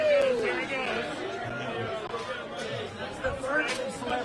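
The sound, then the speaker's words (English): A dense crowd chatters and calls out at a steady, lively level while making the speaker crowd surf, with a few louder whoops rising briefly above the mix of overlapping voices. “The whole crowd is take this.”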